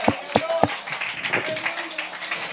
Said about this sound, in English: If you believe that, clap your hands with me today.